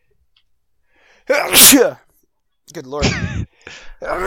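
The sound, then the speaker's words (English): A single loud sneeze bursts out after a quiet moment, followed by someone speaking a few words. “Bless you.”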